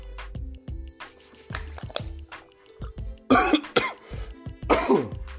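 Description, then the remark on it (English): A man dealing with a little cold coughs and clears his throat repeatedly, a series of harsh, rough bursts with short gaps, the loudest hacking coughs coming near the end. “Boy coughing.”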